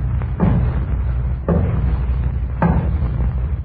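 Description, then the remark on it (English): Three heavy, booming knocks on a door, evenly spaced about a second apart, over a steady low rumble, with no voices. “We were sitting there eating when there was a knocking at the door.”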